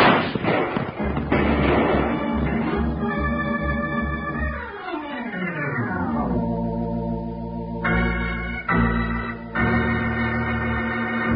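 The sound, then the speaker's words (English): A quick burst of sharp six-gun shots in a shootout cracks out in an irregular volley at the start, then gives way to loud dramatic music with sweeping, sliding tones and no talking. “Put that six gun to work.”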